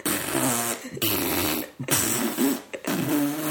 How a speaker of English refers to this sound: Those are the farts I fart into the fart furnace all day long.